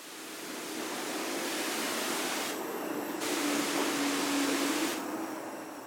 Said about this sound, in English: So when the Mary Rose came into dry dock number 3 in the historic dockyard, she was sprayed with water to keep her wet and stop her drying out. It was also cold water to stop any bacterial activity.